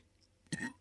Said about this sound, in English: Yes, and extra sweet. Yeah. I'm sure I'm going to have a very loud burp.